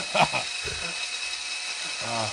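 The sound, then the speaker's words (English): An electric drill with a drill bit in the tip of a man's penis whirs with a steady high-pitched whine through the whole stretch, while voices speak briefly over it near the start and again at the end. “What I'm seeing is a man put a drill bit in the tip of his penis, in his multicolored penis”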